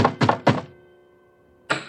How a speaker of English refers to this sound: But then, an hour later, the soldier came knocking again.